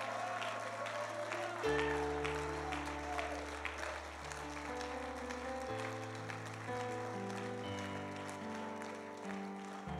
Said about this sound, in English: Proud of you. Well, come on, give Jesus one more wonderful hand clap.